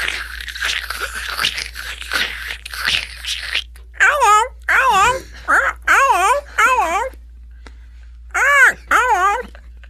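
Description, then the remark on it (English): A person does a bird impression: a run of warbling, wavering calls in short repeated bursts, fairly loud, after a few seconds of breathy, scratchy vocal noises. “I will do the most hilarious, accurate bird impression you've ever fucking seen.”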